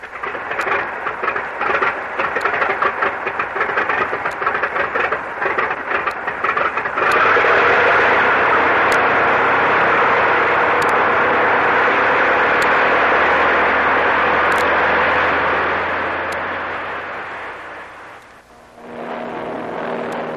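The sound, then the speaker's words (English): A loud, steady airplane engine drones in flight over the area where a storm struck the Manila merchant, its broad roar rumbling and sputtering at first, then smoothing into a sustained hum before fading down near the end and picking up again. “According to the chart, Tony, we've been flying over the area where the storm struck the Manila merchant.”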